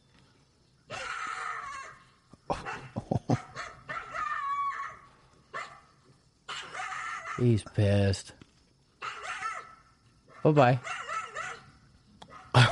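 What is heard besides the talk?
dogs barking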